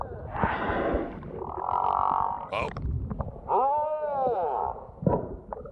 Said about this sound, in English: close to this large male who was singing his heart out, hoping to find a partner. Hit record, like we all would, right? Brilliant. And got this song. Oh. Oh. Yeah, get it, bud. Oh. This is whale song.